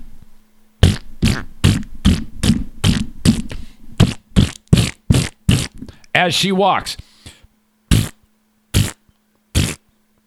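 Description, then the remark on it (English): A voice imitates a woman's loose, rumbling farts with every step she took: a quick, steady series of a dozen or more short, buzzy bursts in a walking rhythm, then a few spaced ones after a brief spoken phrase. “With every step she took, I heard these loose, rumbling farts.”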